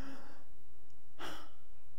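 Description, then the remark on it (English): A voice imitates labored, gasping breaths: a breathy exhale at the start, a pause, then one sharp, noisy gasp near the middle, fairly quiet, with no talking. “I remember his breathing was like this.”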